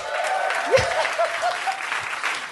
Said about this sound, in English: Yeah, we're pretty full. There was no excuse for no cheering then. round of applause.